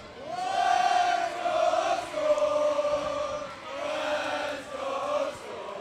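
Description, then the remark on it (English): A group of voices chants a team chant together in loud, sustained unison at a parade, the shout rising and falling in a few long phrases like a cheering crowd. “The TABC Storm being commemorated with one of their chants.”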